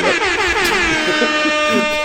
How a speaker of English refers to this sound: Air horn. Man, you still learning these buttons, bro?